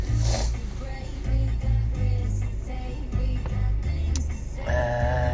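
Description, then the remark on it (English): A car engine idles steadily while the windscreen defrosts on a freezing day, a constant low rumble with a blowing fan and faint mechanical rattles running throughout, without any talking. “I'm just sat in the car waiting for it to defrost.”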